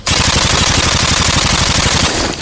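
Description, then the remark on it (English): A sustained burst of automatic AK-47 rifle fire, a sound effect, with rapid, evenly spaced shots rattling loudly and continuously for a couple of seconds, no voices. “By the way, that was clearly an AK-17.”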